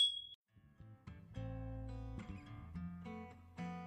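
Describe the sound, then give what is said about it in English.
A single thin, high glass tink rings briefly at the very start, small and a little dull, as small taster glasses clink in a toast, before a short tonal musical passage takes over for the rest. “Okay, I just have to say, our little, like, glass tink is, like, so shitty last few episodes because we're using little itty-bitty baby glens.”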